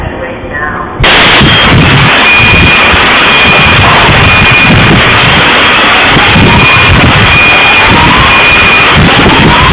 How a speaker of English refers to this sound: So there was an announcement before the explosion, and I think let's just watch that first.